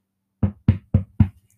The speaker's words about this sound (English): And then just as Pyrrha walks in, the door closes, there's a knock at the door this time.